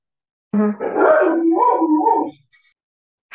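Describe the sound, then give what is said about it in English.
A dog lets out a short bark-like yelp that rolls into a wavering, drawn-out howl lasting about two seconds, fairly loud, with no one talking over it. “Your dog is really loving this conversation.”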